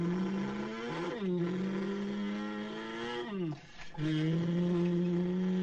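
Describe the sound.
A man in the back does a loud vocal impression of a car engine as they drive along: a steady buzzing drone that dips and swoops in pitch like gear changes, with one brief break before it roars on.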